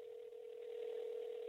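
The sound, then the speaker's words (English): After a man dials his son's phone number, a steady electronic ring tone drones through the telephone line, one continuous buzzing burst that holds evenly for about a second and a half before cutting off, with no voices. “I just dialed this phone number. You hear the phone ring?”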